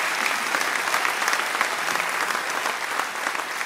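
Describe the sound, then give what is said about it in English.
A crowd claps steadily for several seconds, a dense, continuous wash of many hands at an even, fairly loud level with no clear pauses or voices on top. “I think you should applaud for that.”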